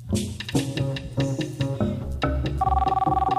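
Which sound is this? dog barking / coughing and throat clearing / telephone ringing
telephone ringing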